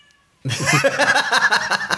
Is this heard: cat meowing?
yes